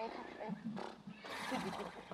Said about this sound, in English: So if you need horse noises, you know, to be all like, hey!